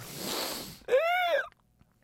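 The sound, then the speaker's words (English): A mouth-made fart noise: a breathy, hissing blow followed by a short, buzzy, tonal raspberry that rises and falls in pitch, about half a second long, with no talking. “Yeah, I make fart noises like with my mouth.”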